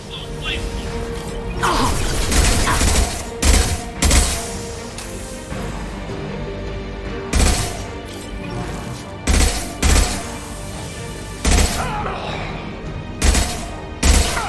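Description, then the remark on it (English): Video game combat with repeated loud bursts of gunfire and heavy booms like an explosion, which kills a flamethrower-wielding enemy, spaced irregularly across a steady, busy background of game noise. “Hey, Flamethrower Man dies to an explosion.”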